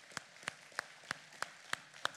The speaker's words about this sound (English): Let's give him one more round of applause this morning to celebrate his goodness among us.